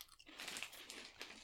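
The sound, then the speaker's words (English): Crunching of cheese-flavoured corn snack crisps, a steady run of crisp, crackly bites and chews lasting about a second and a half, with no talking. “Are you going to crunch or melt?”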